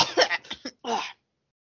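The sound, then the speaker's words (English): A woman gives a voiced, raspy cough in a short burst of several hacking pulses followed by one longer, throaty cough, fairly loud, then silence, as if coughing up a bunch of dust. “And she just coughs up like a bunch of dust.”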